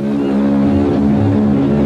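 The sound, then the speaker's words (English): The horn of the SS Bremen, a giant German ocean liner, roars in one long, loud, unbroken blast as the ship stirs into life and departs, its deep, steady tone holding for the whole moment with no one speaking. “With a roar of freedom from her mighty voice, the giant liner stirs into life.”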